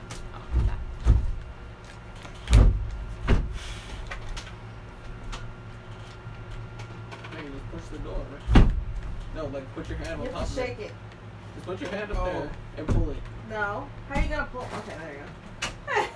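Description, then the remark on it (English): A door is pushed and pulled by hand with a handful of sharp thuds and knocks at irregular intervals while people talk in the background. “Push the door, right? No, like put your hand on top of it. Just put your hand up there and pull it.”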